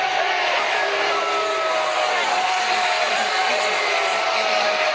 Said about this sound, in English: The boos raining down from the fans at Martinsville. Ty Gibbs with a win, but a very controversial way to go about it. He actually waves on the boos to the fans here.